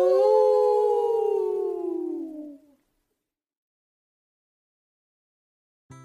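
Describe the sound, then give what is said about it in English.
A single long, loud dog-like howl slides steadily downward in pitch and fades out after about three seconds, leaving silence broken only by a brief click at the very end. “Woof, woof! Howl!”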